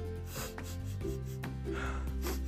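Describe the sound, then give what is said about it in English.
A giraffe on a sidewalk gives a few loud, breathy sniffs in short bursts over a steady bed of sustained musical tones, with no one speaking. “On the sidewalk stood a giraffe who was sniffing loudly.”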